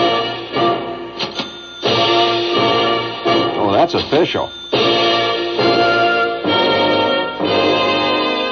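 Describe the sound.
Jingle Bells played with cash register sounds: rhythmic bursts of clanking, chiming mechanical tones that carry the melody, fairly loud and steady, with a brief spoken remark partway through.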